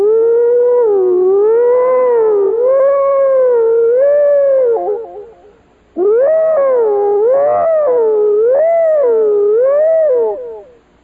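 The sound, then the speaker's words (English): A man hollers in imitation of a fire siren, the call he used to summon a town's volunteer fire department: two long, loud wailing calls, each rising and falling in pitch in slow waves, separated by a brief pause. “We did not have a fire siren.”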